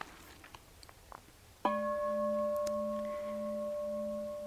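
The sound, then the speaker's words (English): After a quiet stretch with a few soft clicks, a bell is struck once and rings out with a steady, shimmering tone and clear overtones, sustaining and fading slowly through the rest. “So for example, if I ring the bell,”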